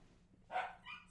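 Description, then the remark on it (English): A dog lets out two quick, clipped barks in close succession, fairly soft, with no one talking over them. “My dog is clearly into this.”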